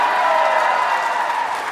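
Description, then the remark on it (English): An audience applauds in a dense, steady wash of clapping with a faint murmur of cheering, holding at an even, fairly loud level for just under two seconds. “Round of applause if smoking weed causes you way more anxiety.”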